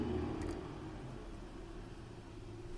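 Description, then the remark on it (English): A truck rumbles steadily in the background, a low droning engine hum with a brief brighter hiss near the start, holding at a fairly even level throughout with no one talking. “So give me a second, because there's a truck in the background.”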